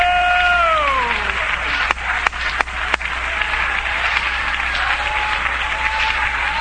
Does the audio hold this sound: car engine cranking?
no